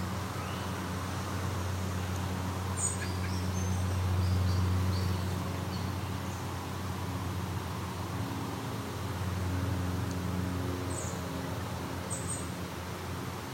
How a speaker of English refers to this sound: It's a robin, American robin. Yeah, a couple robins came in.